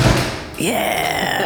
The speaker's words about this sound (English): So you're able to make the handle turn and creak and get just enough to pop the door open.